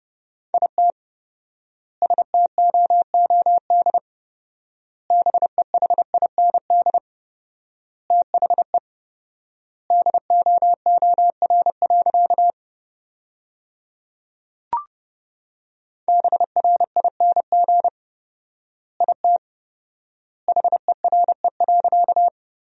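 Rapid Morse code at about 30 words per minute with 4x word spacing, sending sentences from the top 500 words: a steady mid-pitched tone keyed in quick dots and dashes, grouped into words separated by long pauses, with one faint click partway through.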